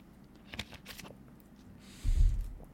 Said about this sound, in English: All right, next one. Let's drink some water here.